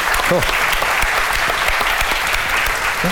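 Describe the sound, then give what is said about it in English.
A crowd at the Morsang Hotel in Ireland applauds steadily, dense overlapping clapping at a loud, even level throughout, with a few faint voices and cheers mixed into the noise. “can we get a round of applause or a Bula Bus, because we're in Ireland,”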